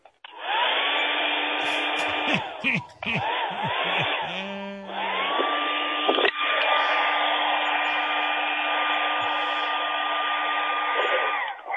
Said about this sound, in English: I think the blow dryer's a better idea. Hold on. That might just work, actually. Yeah. Hold on. I'm plugging it in.